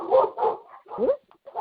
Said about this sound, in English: Oh, wait. Oh, the dog. Hold on.